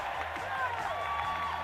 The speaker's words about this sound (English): The crowd's going wild.